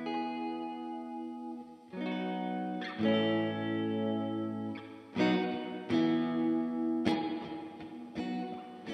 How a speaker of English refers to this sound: This is a Holier Grail. Yeah. Reverb pedal. Classic.